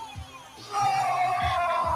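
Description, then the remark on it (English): A crowd at a Tony Robbins event roars in response to his call for a roar, the noise swelling abruptly after a quieter moment and holding as a loud, sustained mass of yelling voices until the end. “That's the fucking roar!”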